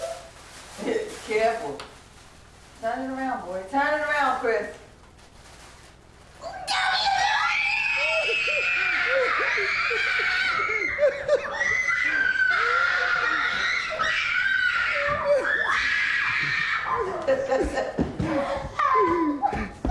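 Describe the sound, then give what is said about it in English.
Children opening Christmas presents chatter for a few seconds, then erupt into loud, sustained, high-pitched excited screaming with bits of laughter that continues almost without a break to the end. “Don't you love that reaction and the excitement there?”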